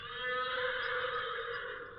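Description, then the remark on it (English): Morato's black horse whinnies loudly and steadily for about two seconds in answer to another horse's challenge, a bright, quavering neigh with strong harmonics that fills the whole moment with no talking. “Morato's black horse heard him and answered his challenge.”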